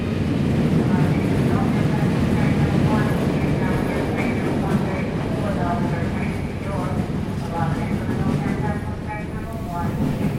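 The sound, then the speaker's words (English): Busy train station ambience: a steady low rumble of rail traffic beneath a constant murmur of crowd voices, fairly loud and continuous throughout. “Episode 3, Train Station.”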